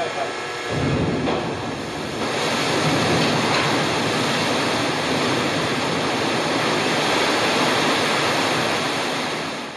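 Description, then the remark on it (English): Loud, steady rushing water from water effects on a film set, recycled water with additives to stop foaming, pours continuously, a dense roaring wash that surges in within the first second and holds without pause to the end. “We've put additives in the water to stop foaming, because foaming's quite often an issue with shooting the water effects.”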